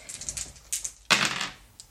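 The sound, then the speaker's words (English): A handful of dice, rolled for a Dex and Med check in a game, clatter and tumble across a hard surface, a burst of sharp rattling clicks that peaks then settles, with a few stray taps before and after. No voices. “Okay, roll.”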